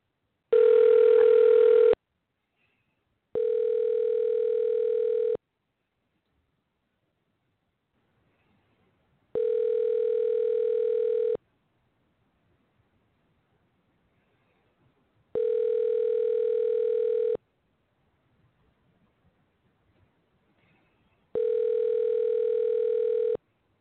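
A phone's outgoing ringback tone while calling someone: a short burst, then four long, steady electronic rings of about two seconds each, separated by even pauses of silence. Clear, with no voices.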